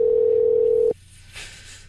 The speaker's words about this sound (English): The terrible phone ring.